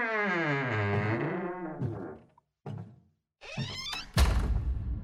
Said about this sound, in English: The door was already unlocked when I turned my key. I opened the door, hoping for the best.